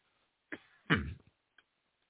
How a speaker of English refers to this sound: Sorry for coughing